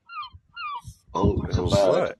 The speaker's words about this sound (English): Oh, there's a bird. Seagull. Oh, yeah. Bombarding me.